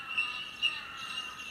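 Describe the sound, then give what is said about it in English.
A colony of bell birds, also called bell miners, gives a steady wash of high chiming calls like many little bells. Three brighter ringing notes stand out at roughly even intervals. No one speaks. “This nature noise is coming from a type of bird called a bell bird.”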